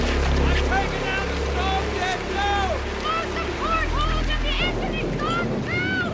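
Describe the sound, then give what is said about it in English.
Heavy wind roars over a boat's droning engine during a big storm while several voices shout and yell, their words lost in the constant, loud rush of air and water. “It's just screaming and yelling and wind.”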